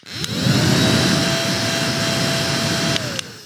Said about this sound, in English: I cannot fully express exactly how pleasing this is to use. I'm thinking of going and getting Grace to set her on my desk all the time just so I have more to vacuum up. Listen to this little vacuum.